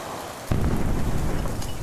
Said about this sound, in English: It sounds like the Fembots just blew up 3rd Avenue.